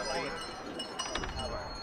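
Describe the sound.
A bell rings in a video, with several bright metallic strikes close together, their high tones ringing on over a steady background hum and faint murmur of voices of people gathered outdoors in the cold.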